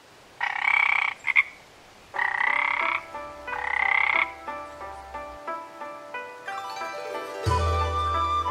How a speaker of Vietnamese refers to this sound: Sau một ngày dài rộn ràng tấp nập, giờ đây khu chợ chỉ còn lại tiếng ếch nhái kêu râm ran, âm thanh ngoài đồng ruộng được cơn gió nhẹ đưa vào.